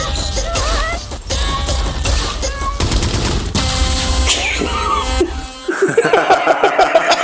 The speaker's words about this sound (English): the way it just ends with the machine gun fire and the air horn